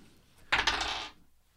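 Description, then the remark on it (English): Two percentage dice, rolled together at once, clatter onto a table in a short burst of hard, rattling clicks lasting about half a second, fairly loud, then quickly settle into quiet. “I mean, both dice at once, but percentage rolls.”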